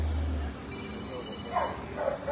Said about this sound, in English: Listen to that dog.